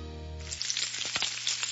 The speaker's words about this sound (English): Hear that? Sounds like sizzling bacon, right? Trust me, it looks like bacon too, only it's not. It's Johnsonville Sausage Strips. Strips of sausage in amazing flavors like maple and chorizo.